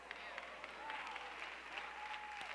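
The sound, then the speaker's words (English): An audience of about 32 people applauds in a dense, steady patter of clapping lasting a couple of seconds, with indistinct voices rising and falling over the noise. “I didn't expect any ladies to clap, because y'all ain't gonna go 40 years without buying a pair of shoes.”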